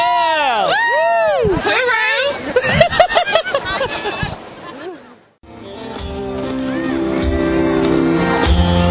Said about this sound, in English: Here comes …, and you can tell this crowd is energized for him.